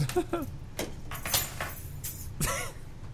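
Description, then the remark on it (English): A set of car keys jingles and clatters as they are rolled off a table and drop onto a hard surface, several bright metallic rattles over a low background hum. “You want my car keys?”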